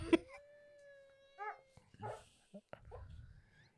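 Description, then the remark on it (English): A cat gives a few short, wavering cries, thin and whiny with bending pitch, fairly quiet, broken up by a sharp knock and some low rumbling in between. “You just hear the cat.”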